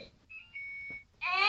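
An electronic infant simulator doll wakes its carer at 11:30 p.m.: a thin, steady electronic beep, then a loud synthetic wail with stacked, wavering tones. Nobody speaks.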